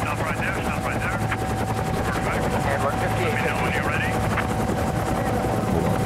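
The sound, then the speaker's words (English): Steady, loud helicopter rotor noise fills the whole clip as the helicopter bounces around in flight, a dense chopping drone with a constant engine whine and sharp crackling bursts layered on top. “Look, the helicopter is bouncing around.”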